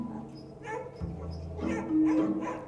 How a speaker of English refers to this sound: And these dogs are excited.